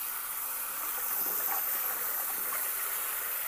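A cleaning spray hisses out in one long, steady, breathy burst, holding an even loudness for several seconds with no voices over it.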